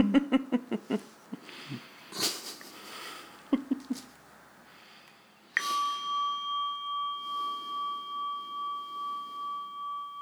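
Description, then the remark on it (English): A series of soft knocks and taps gives way to a single clear bell strike whose bright tone rings on for several seconds, gently pulsing as it slowly fades. “So we're going to end with the bell again, if that's okay.”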